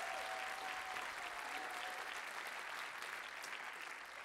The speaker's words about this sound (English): Our team has worked so hard this month putting this together. Would you guys give them a big round of applause for doing all this hard work?